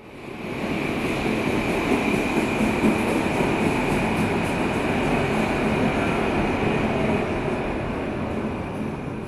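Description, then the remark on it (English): A subway train at the Onkel Tom's Hütte subway stop in Berlin rumbles loudly and steadily through the whole stretch, with a sustained metallic whine riding over the clattering roar and no voices. “Like this Berlin subway stop”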